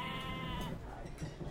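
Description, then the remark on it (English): A goat bleats in a wavering, nasal cry lasting about half a second, followed by a low rumble of background noise. “We got the goats. We got three goats, in fact.”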